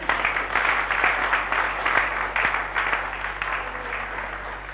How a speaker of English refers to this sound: Give them a clap.